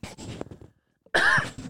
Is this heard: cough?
yes